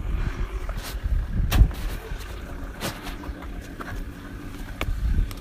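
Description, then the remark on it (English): A car pulls up, its low engine rumble steady under occasional sharp clicks and thumps, with no one talking. “Hey, there's a car pulling up.”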